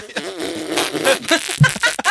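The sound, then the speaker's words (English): A drawn-out, raspy fart sound effect with a wavering buzz, breaking into a few quick sputters before it ends; no one speaks over it. “So would the fart sound like a fart on the outside?”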